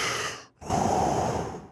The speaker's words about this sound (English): Geez, I'm breathing like Darth Vader now.